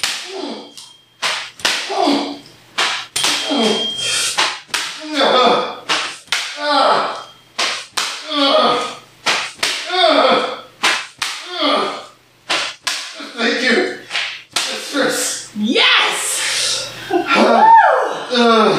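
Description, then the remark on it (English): Sharp whip strikes crack over and over in a quick, steady rhythm, loud, with voices murmuring and breathing in between the lashes. “Please whip me more.”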